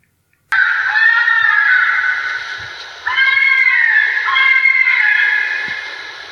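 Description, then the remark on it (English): Two long, loud, harmonic wailing screams from a fisher cat, each starting abruptly and wavering in pitch; no talking. “Would you like to hear the Fisher cat scream?”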